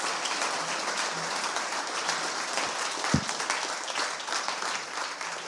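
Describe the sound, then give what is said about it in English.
An audience at a morning church worship service claps steadily and loudly to give the Lord a shout and a clap. A dense, continuous wash of applause lasts several seconds, with a few raised voices shouting faintly beneath it. “Come on, let's give the Lord a shout and a clap this morning.”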